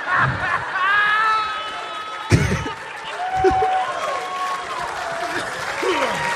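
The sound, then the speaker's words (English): A live audience applauds and cheers for several seconds, a dense wash of clapping with scattered whoops and shouts rising above it, fairly loud and steady throughout. “Hot crowd. Hot crowd. Lovely crowd. Love the crowd.”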